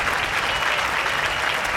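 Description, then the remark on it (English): A crowd applause sound effect played on a show during its spelling segment, 'How Would It Spell?': steady applause, a dense wash of many hands clapping at an even, sustained level for under two seconds, with no voices standing out. “Hit the crowd, yep.”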